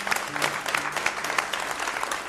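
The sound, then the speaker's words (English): The audience of the Red Barn Radio show applauds steadily, a dense wash of many hands clapping at once with sharp crisp bursts throughout, holding an even loudness for a couple of seconds with no voices heard. “So one other reason to clap, and I'll add this, is that Red Barn Radio was actually cited in this short piece, which is terrifically affirming for the small group of us who put this program together each and every week”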